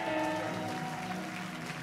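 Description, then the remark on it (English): A church crowd on Youth Sunday claps in praise for the church's youth. The clapping is steady for a couple of seconds, a dense, even wash of hand claps at moderate loudness, with a faint sustained tone underneath and no voices. “Can we give another hand clap of praise for our youth?”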